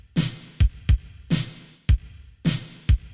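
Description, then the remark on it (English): A slow drum loop repeats three times: a bright snare crack trailing off in a long, washy reverb tail, followed by two deep, punchy kick thumps. It is steady, fairly loud, and has no voices. “Basically, what I did was I took a snare beat and I put in a reverb.”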